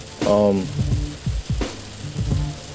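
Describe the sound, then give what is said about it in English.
Hail patters steadily on a car with the recordist sitting inside, a dense crackling rattle running throughout, with a few heavier low thumps and a brief tonal hum near the start. “Unexpectedly, I'm gonna have to wrap this episode up real quick because it just started hailing. Like I told you, I'm recording outside. I'm in the car.”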